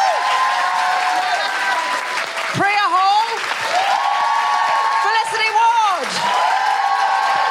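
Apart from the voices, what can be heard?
audience applause and cheering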